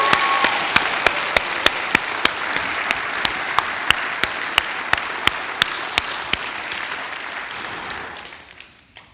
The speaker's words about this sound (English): If you're not clapping for me, I hope you don't. If you do a clap for me, stop it. But if you want to clap for God, give him big praise. Give him praise.